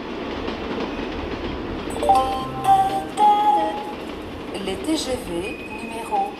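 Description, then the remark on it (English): A train rumbles through a busy mainline railway station in France in August, its steady mechanical noise broken by brief high metallic squeals, while indistinct voices murmur in the background. “August in France, when Paris empties out, brings an annual ritual to the country's mainline railway stations.”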